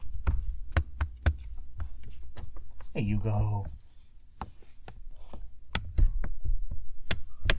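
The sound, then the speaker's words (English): An excited puppy's tail thumps repeatedly against a surface as it wags, in quick, uneven beats, dull and punchy, with a person briefly speaking partway through. “Your tail is being really loud right now.”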